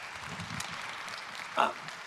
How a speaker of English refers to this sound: You can clap for that.